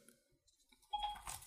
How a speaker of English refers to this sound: My phone thought I said Siri. What did I say? I said something that must have sounded like Siri because my phone turned on.